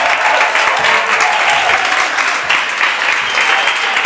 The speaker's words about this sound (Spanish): Vamos a darle un fuertísimo aplauso a Bárbara de Regil.